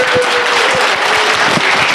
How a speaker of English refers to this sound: And hey, like to give Michele Leroux Bustamante another great big round of applause.